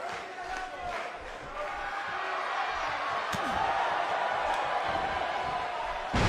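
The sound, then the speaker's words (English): A dense arena crowd roars steadily throughout, swelling after a single heavy thud about halfway, as a wrestler slams an opponent onto the mat with a neck breaker; a commentator's voice may be mixed faintly underneath. “And a huge neck breaker.”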